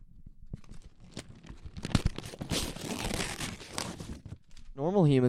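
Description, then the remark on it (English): Crackly paper tearing and crinkling, with a few sharp rips giving way to a sustained crumpling rustle for several seconds, before a voice briefly cuts in at the end. “Normal humans can rip paper.”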